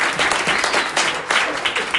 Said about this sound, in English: Thank you to our panelists. Let's hear a round of applause for them. They're awesome.